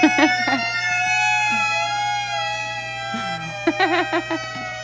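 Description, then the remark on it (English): A violin imitates the Doppler sweep of two police car sirens. Sustained, bright bowed tones waver and slide in pitch. They start loud, fade slightly, then swell again with rapid wobbling near the end, over a steady low hum. “Two police car Doppler effect, man.”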